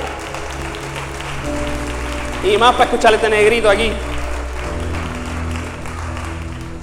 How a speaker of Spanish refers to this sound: Como dije por la mañana, ver un grupo tan grande de personas un 4 de julio, que mucha gente se va para la playa a pasear, que ustedes han sacado para darle el primado a Dios, de verdad que se merece un aplauso.